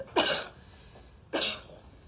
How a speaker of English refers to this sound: She coughs once.